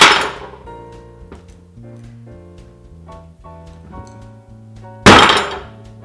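Two heavy, loud thunks of a cleaver banging down through a hard kabocha squash, one at the start and one near the end, with soft melodic music playing between them.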